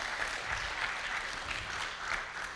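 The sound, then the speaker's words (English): An audience applauding the Lord: a steady, dense wash of many hands clapping, sustained at an even moderate level throughout, with no voices standing out. “Yeah, you can give the Lord a good round of applause.”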